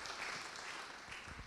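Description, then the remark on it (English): A church audience at City Light Church, North Adelaide, applauds steadily to welcome a guest up to the front, many hands clapping in a dense, even patter that holds at a moderate level throughout without pauses or voices standing out. “Give him a little clap, round of applause, some hoots and hollers.”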